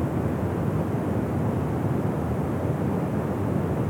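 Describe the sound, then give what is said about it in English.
The Dettifoss waterfall roars in a steady, unbroken wash of deep, rumbling noise, loud and constant throughout with no pauses or voices. “Its water falling at such a large volume.”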